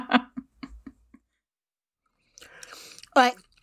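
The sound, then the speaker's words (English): Crunchy chewing of a keto Cheeto snack: a quick run of about five crisp crunches, then a pause before someone starts to speak. “All right, we got a keto Cheeto and we've got his special eyes are closed.”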